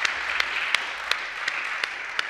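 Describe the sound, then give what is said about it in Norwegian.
An audience at a Pentecostal church gathering applauds Cornelis Kant steadily, a dense wash of many hands clapping at once, with a few sharper, louder claps punching through at regular intervals. No one speaks. “La oss gi Cornelis Kant en stor applaus.”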